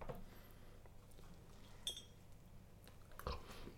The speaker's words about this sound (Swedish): Det här är ju lyxigt. Inte smaska i mikrofonen nu